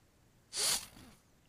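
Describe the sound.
A voice imitates a long, drawn-in animal-like sniff: one breathy, hissing inhale that swells sharply, then trails off into a softer tail. It stands alone with no talking.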